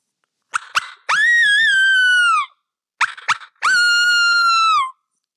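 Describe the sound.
A coyote call blown on a mouth call, imitating the animal to get roosting turkeys to gobble: two loud bursts, each a couple of sharp yips followed by a long, wavering high howl that sags at the end.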